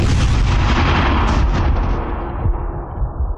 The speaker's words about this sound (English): I'm picturing a earth-shattering kaboom.